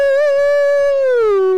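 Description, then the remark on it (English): A single voice hums a long, eerie sustained note, holding steady before sliding downward at the end, imitating the nighttime Hyrule Field theme from a Nintendo game. No other sounds accompany it. “No, the nighttime Hyrule Field theme gets me every time. How's it go? It's like...”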